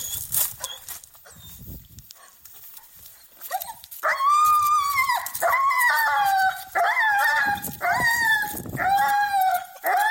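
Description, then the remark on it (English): On the way to the park, after a few seconds of scattered short yips and rustling, the dog Lana lets out a run of loud, high, wavering howls that sound like human screams, like Jessica Walter's scream in Arrested Development. The howls come one after another with brief breaks. “Lana, when we're going to that park, does an uncanny impression of the scream of Jessica Walter from Arrested Development. This is genuine audio footage of us going to the park today.”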